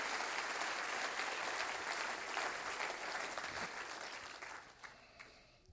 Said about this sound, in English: There's nothing like the grace of God. Would you clap your hands and rejoice to that right now?